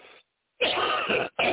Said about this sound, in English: I hope that's the last cough.